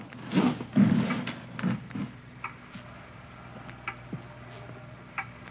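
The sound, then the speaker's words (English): A clock ticks loudly and steadily, its sharp clicks evenly spaced, after a few heavier thumps and rustles at the start. “It's a loud clock, ain't it?”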